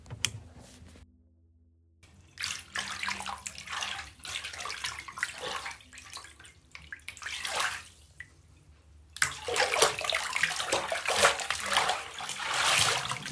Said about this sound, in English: Suddenly, I woke up to the sound of water splashing and swirling. It sounded like it was coming from the tub in our bathroom. It was very loud, as if someone was bathing or perhaps struggling.